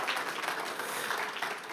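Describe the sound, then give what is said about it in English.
An audience gives the Lord a big round of applause, many hands clapping together in a dense, steady crackle that holds an even level for the whole short stretch. “Why don't you give the Lord a big round of applause?”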